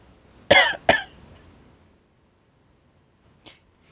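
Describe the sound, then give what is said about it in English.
Two sharp coughs in quick succession, fairly loud and alone, followed by quiet and then a brief faint rasp a few seconds later. “No, I just coughed.”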